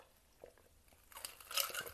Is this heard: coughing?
no